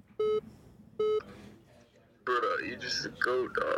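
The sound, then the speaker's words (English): A phone rings loudly with two short, bright electronic tones about a second apart; it keeps ringing and glitching and will not hang up however many times the button is pressed. A couple of seconds later, voices start talking loudly. “It looks like it's like glitching out because it's ringing so much. It won't hang up.”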